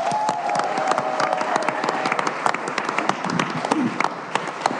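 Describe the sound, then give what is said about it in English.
An audience bursts into steady, loud applause, dense overlapping claps sustained for several seconds with a faint tonal hum early on and no voices speaking. The applause welcomes comedian Gráinne Maguire as the first speaker of a Think Tank segment, where speakers at a lectern propose education policies. “Let's have an applause for my first speaker for the Think Tank, for Gráinne Maguire!”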